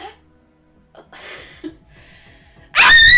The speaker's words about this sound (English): do your real scream